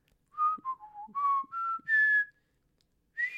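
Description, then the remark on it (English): Someone whistles the opening phrase of the Star Spangled Banner, a clear solo melody of about six notes dipping low then leaping high, followed by a pause and one more note. “What do you want me to whistle? Name a tune, okay? The Star Spangled Banner.”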